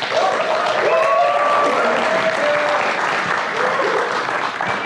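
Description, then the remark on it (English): A crowd applauds a morning guest, a dense, loud wash of many hands clapping that holds evenly for about five seconds, with a few faint cheers or whoops rising briefly above it. “Would you give him a big round of applause?”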